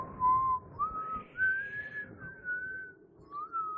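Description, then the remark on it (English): A person whistles a slow, wavering melody of sustained, gliding notes, imitating the weird, spooky Simpsons music, with soft rumbling background noise underneath and no speech. “Sorry, every time I hear whistling, I just think of the Old West.”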